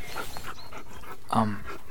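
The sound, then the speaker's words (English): A three-headed dog pants rapidly and steadily, with a brief low growl rumbling through the middle of the quick, rhythmic breaths. “Your dog has three heads.”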